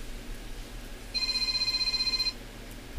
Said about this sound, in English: And so here we've got a phone ringing. I took care of it. Did you? Well, that's the first time I got a phone call over the microphone.